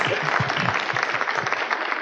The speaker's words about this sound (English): That was wonderful. I did have some concern for Jesus a while ago. It looks like he may have been suffering from rigor mortis, but let's give Mary and Joseph a round of applause nonetheless.